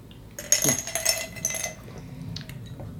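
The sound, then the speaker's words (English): Glasses of Añejo clink together in a quick toast, a cluster of bright, ringing taps over about a second, then fading into quiet background noise. “But yeah, so cheers. Salud.”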